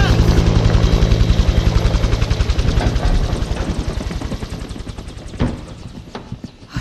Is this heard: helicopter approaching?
yes